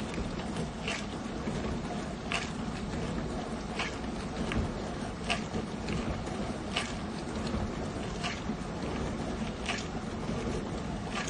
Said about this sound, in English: I'm starting off today's recording, today's episode, in the kitchen because the dishwasher is going and it's got a particularly funky beat to it, or rhythm to it. Just listen to this.